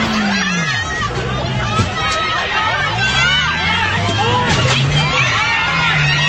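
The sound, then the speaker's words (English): A dense crowd of anti-government protesters in Hong Kong fills the scene with continuous overlapping voices and shouting as a car races back and forth through them, a loud, steady hubbub of many people, with occasional louder calls rising above the din. “This is a car races through the crowd of protesters back and forth.”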